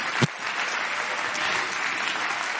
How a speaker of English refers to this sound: Come on, clap your hands to the Lord right now and give Him praise.